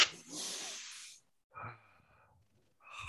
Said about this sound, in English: All right, let's just do a couple of breathing exercises first then. All right, here we go.